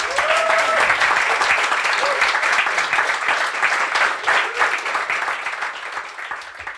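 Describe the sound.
An audience gives a round of applause for a guest, clapping loudly and steadily for about seven seconds, dense overlapping claps forming a continuous roar that eases slightly near the end, with a few faint voices mixed in.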